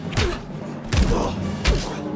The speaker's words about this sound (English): Ooh, crunch of bones.